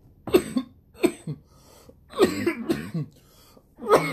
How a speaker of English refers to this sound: My bad, y'all. Ooh, we're here coughing up a lung.